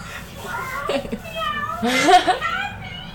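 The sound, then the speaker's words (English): The speaker's mother imitates a cat, giving a couple of drawn-out, wavering meows, the second louder and more strained, over a low background hum. “That's my mom meowing.”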